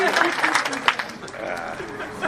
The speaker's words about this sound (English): All right, all my Nicholas cosplayers, stand up. Save one. Not the beast. Everybody give me a round of applause.